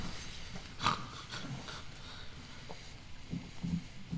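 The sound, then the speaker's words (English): A voice imitates a sleeping tiger's snoring: a few low, rumbling snorts and breaths spread unevenly over a few seconds, with one louder rasping snort early on. “You hear snoring.”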